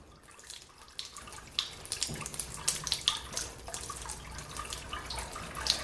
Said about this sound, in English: That gentle trickle of water is a characteristic of the Malverns, a natural spring. This particular one is enclosed inside a small building. There's a stone trough in front of it,